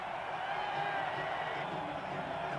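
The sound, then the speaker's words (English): Baseball fans celebrating their club's American League West Championship: a steady, dense and even roar of many people clapping and cheering, holding at a constant level without pause. “I had to leave the microphone there applauding me.”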